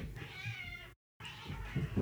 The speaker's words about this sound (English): There are two cats fighting outside my window. Two cats? Two cats are fighting outside my window, guys. It's not even a joke.